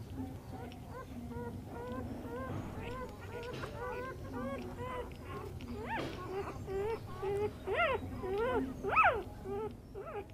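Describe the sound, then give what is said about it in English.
Weak newborn black puppies, delivered by section, whimper and squeal in a steady stream of thin, rising cries, overlapping one another, growing louder and more insistent toward the end over a low background rumble, as they are given milk in the kennels. “Now, puppies. These little black ones are all quite weak. So we're just giving them some milk.”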